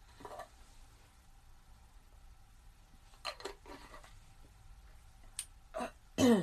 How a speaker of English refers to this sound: I'm good. I just, you know, every morning you gotta sneeze. Or you, I do. Every morning I sneeze.